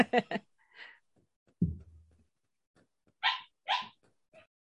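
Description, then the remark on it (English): A dog barks in short, sharp bursts as it is being let out: a quick cluster of three at the start, a dull thump, then three more spaced barks, with nobody talking. “So I'm going to be a pain in the ass for the editor and go let my dog out.”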